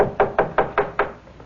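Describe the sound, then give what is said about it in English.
Five firm knocks on a door in a steady, evenly spaced rhythm, fairly loud, with no voices. “Leopold, knock on the door.”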